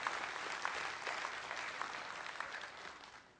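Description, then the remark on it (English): An audience in a church claps steadily, a dense, continuous patter of many hands that holds at an even level before easing slightly at the end. “Folks, it's not just clapping because it's good Jesus talk.”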